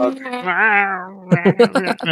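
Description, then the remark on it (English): A person imitates a screaming cat with one long, drawn-out wailing meow that rises and falls, followed right after by quick, choppy vocal sounds. “So I had screaming cats for 4,000 like, miles. Could you replicate the sound so that we...”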